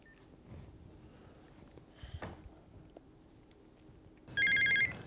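Soft clicks and faint tones of a telephone being dialed to call a bait and tackle shop, followed by a single loud, buzzy ring that lasts about half a second. No one speaks.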